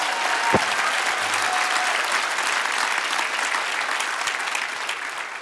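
An audience claps together in a loud, dense burst of applause that holds steady for several seconds, with a sharp isolated clap near the start and no talking over it.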